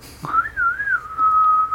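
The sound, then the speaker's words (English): A person whistles a short melody taken from an old Western, the pitch sliding and wavering before settling into a long held note, with no talking underneath. “You're terrible at whistling.”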